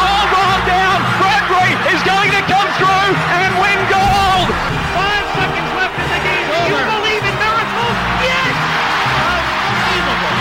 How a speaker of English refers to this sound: They're standing and they're applauding that dramatic performance by James Torval and Christopher Dean.